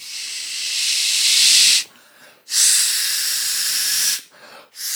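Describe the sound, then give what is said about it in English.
A voice makes long, steady hissing sounds that imitate air rushing into a balloon, with two sustained blasts separated by short breaths and a third starting at the end. Fairly loud. “I'm really glad you started adding the sound effects,”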